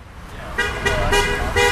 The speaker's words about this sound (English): Some cars honk their horns as they drive past the demonstration while church is going on inside.